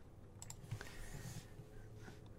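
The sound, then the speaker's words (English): Soft, irregular clicking of keys on a computer keyboard as a message is typed, faint, with short bursts of taps and brief pauses over a quiet background hum. “So, I'm going to send you a message on Twitch here. Send you a message.”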